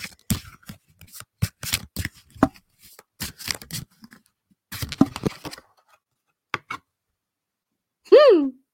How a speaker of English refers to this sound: Okay. Couple more shuffles here.